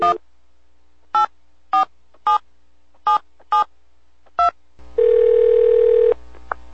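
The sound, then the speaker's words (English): A phone number is punched in to call Capcom pinball designer Python Angelo: seven crisp touch-tone beeps at slightly uneven intervals, followed by a steady, louder telephone tone held for about a second. No voices. “We're going to get him on the phone right now.”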